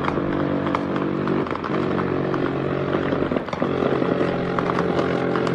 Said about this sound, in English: That is a military helicopter raining 50 caliber tracer rounds.